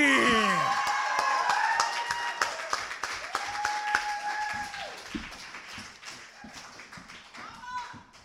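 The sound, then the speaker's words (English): A crowd breaks into sustained applause for a performer coming to the stage, dense clapping filling the space, with whoops and cheers rising over it early on before the clapping gradually thins out toward the end. “Coming to the stage, give him a big round of applause.”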